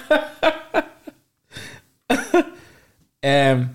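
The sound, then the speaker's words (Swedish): A few short, sharp coughs in quick succession, then throat clearing and a final voiced, rough hack, fairly loud with brief pauses between. “Ursäkta hosta.”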